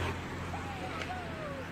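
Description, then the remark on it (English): Two cars pass on the road, coming from two different directions: a steady rumble of car engines and road noise at moderate volume, with a faint thin whine drifting over it and muffled voices in the background. “Two cars come. We got to wave the cars to pass. You got two cars coming two different ways.”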